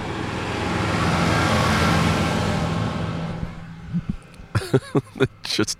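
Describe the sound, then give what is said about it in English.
A tractor engine rumbles past at a cemetery, a broad low drone that swells and then fades over about four seconds, followed by a person talking. “Here comes a tractor.”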